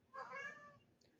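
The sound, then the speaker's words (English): A single cat meow, a drawn-out tonal cry lasting under a second, clear against a quiet background, followed by a faint brief click. “Oh, was that your cat?”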